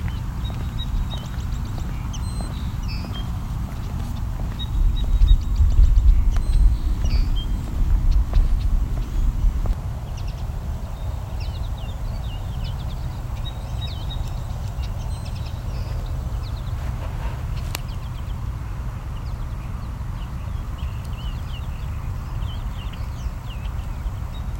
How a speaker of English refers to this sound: You can also hear some European starlings as well. There's our starlings squawking. Very common urban bird.